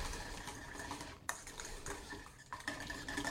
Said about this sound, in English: And then scramble the vanilla and the eggs together.